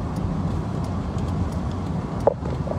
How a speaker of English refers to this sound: And the cars are still coming. Yes, the cars are still coming. Look at them. Look. I would say there's more than 205.